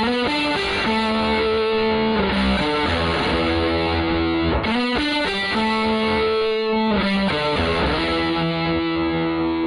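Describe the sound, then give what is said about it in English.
An electric guitar plays a melodic line through an Octavia octave pedal with the boost set to the midway point and the tone stack turned off, giving a thick, distorted, mid-heavy tone with less octave sound. Notes are sustained and loud, with no one talking. “If I move the boost back to the midway point and turn the tone stack off, we don't get as much of the octave sound, and without the tone stack, the tone is a bit more mid-heavy.”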